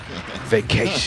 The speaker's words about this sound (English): Can I get a bomb drop? Do I have an explosion?